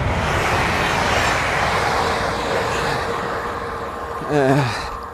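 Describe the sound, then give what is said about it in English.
A train rumbles past with a steady, broad roar that fills the whole stretch, and a brief tonal sound rises over the noise just before the end. “It's another train.”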